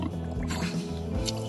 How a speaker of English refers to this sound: These recordings are actually videos. In this one, three pigs are huddling together.